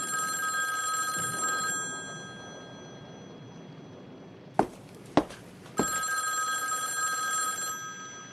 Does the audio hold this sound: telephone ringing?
yes